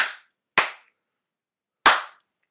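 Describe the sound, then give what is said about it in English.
Three sharp, loud hand slaps ring out with no talking, the first two close together and the third after a longer pause, each with a short decaying echo. “All right, let's slap it out.”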